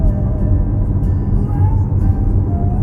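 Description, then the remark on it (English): Steady low engine rumble from inside a moving manual-transmission car as the driver changes gears, with a faint whine that rises and shifts in pitch as the revs change, continuous and fairly loud throughout. “Such a fun thing is driving stick, driving standard.”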